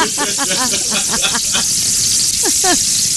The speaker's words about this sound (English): We're frying bacon here at the NPR studios.